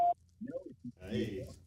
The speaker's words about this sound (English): Go ahead. Start at the beep.